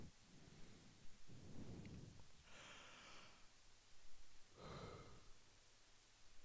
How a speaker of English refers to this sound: Sorry, just yawned then. Recording this a bit late.